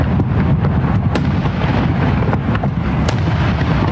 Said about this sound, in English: Those, of course, are fireworks, and maybe the best place to watch them explode every July 4th is over the Statue of Liberty.